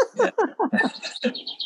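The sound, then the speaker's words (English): Sparrows with a nest up on the third floor by an outside light chirp right outside a house in quick, repeated bursts, a busy run of short descending calls followed by thinner, higher tweets, clear with no talking. “I think we have a sparrow's nest up in the third floor.”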